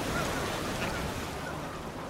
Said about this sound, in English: The waves crashed against the wild beach where Fred and Verna's children used to do their runs.